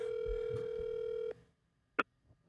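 A single ringback tone on an outgoing phone call made during a live show: a steady electronic purr lasting just over a second, then silence and a soft click. No one picks up and there's no talking.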